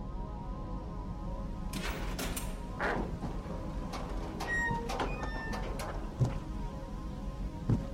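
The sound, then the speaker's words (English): A lock clacks and rattles, then a door swings open with a brief scraping whoosh and a few squeaky metallic tones, all over a steady low background hum. “All right, here I come. Door's unlocked.”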